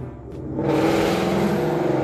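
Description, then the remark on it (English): A car with a loud dual exhaust revs hard, its engine swelling from a low rumble into a roaring, throaty growl that holds steady for about two seconds. “Everybody got to have dual exhaust like a fucking idiot, like fucking up the quietness.”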